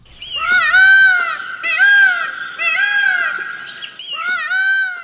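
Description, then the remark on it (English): A male Indian peafowl (peacock) calls four times in a row, each a loud, nasal, wailing cry that rises and falls, spaced about a second apart with no voices; recording from the Macaulay Library at the Cornell Lab of Ornithology. “Male Indian peafowls, or peacocks, are among the most recognizable birds in the world.”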